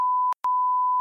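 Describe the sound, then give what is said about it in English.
A loud, steady censor bleep tone fills the moment, broken once by a short gap before resuming; no voices are audible beneath it. “Beep that one.”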